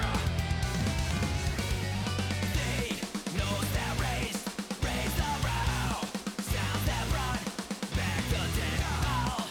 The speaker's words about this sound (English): This part is so... it's all weird, but... it's so cool. Oh, and that scream there.